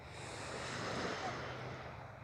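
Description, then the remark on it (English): A steady, continuous wash of ocean surf rolls on with no pauses, mixed with a breezy rush. It is even in loudness, with no voices present. “And literally picture the sea of energy here, like the water that we're looking out onto.”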